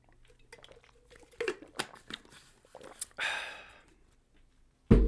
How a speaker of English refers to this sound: I have a little sip of water here.